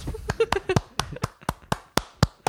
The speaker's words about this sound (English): you gotta clap. It sounds weird, me just clapping. You're gonna blow out the microphone.